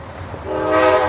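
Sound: passing train with horn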